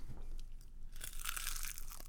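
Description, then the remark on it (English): A single crunchy bite right up against the mic, a crisp, bright crackle that sharply swells after a second and lingers briefly over low rumbling. “Give us one good munch.”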